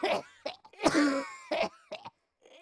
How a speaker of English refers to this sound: And within a few seconds, I heard a small gurgling noise coming from the boy. then a cough, and then all at once Glaucus was choking and spluttering.